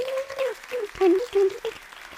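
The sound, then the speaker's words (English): A church audience breaks into steady applause for the news that building permit plans for South Beach Church are being submitted to the city of Newport, a dense patter of many hands clapping, with a few voices whooping and cheering over it for a couple of seconds. “That deserves a clap.”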